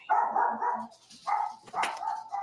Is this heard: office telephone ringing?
no